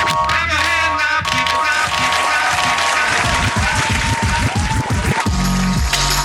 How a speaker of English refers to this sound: Thanks for coming out. Please clap.